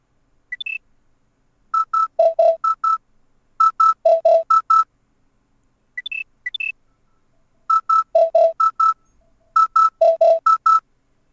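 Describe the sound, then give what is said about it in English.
One of the original electronic wake-up alarm sounds plays a short rising chirp followed by rapid clusters of bright beeping tones alternating between two pitches. The melodic pattern plays twice, loud and clear, with no voices. “Yeah, so that, again, that was one of the original alarms, and just being, waking up to that every morning, I think would just make me feel kind of agitated.”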